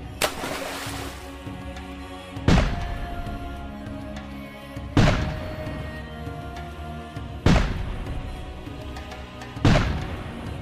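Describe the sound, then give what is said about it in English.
Five heavy cannon blasts fire one after another at a steady pace as a volley while a casket is tossed overboard, each booming loudly and rumbling away before the next, with no voices. “And they sing it as they toss Siduri overboard while doing a cannon volley for them.”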